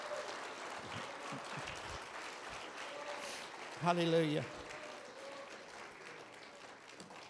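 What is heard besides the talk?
audience clapping hands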